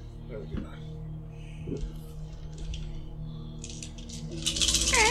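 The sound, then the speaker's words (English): Dice are rolled for a heavy machinery roll to cut through an airlock hatch with a cutting torch in a game, rattling and clattering onto a hard surface near the end, a bright burst of rapid clicks rising over low background voices and murmuring talk. “Alright, you're going to head down the umbilical, and kind of float down and drop down on top of the airlock hatch, and go ahead and give me a heavy machinery roll to start cutting through.”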